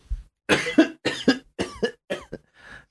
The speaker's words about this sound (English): Cough.